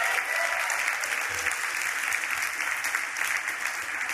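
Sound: audience applause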